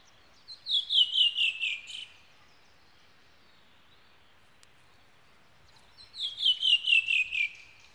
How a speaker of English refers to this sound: And I'm going to play the wood thrush song so you can get a better understanding of the song and the changes in their pitch.